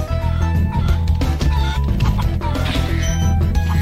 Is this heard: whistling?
no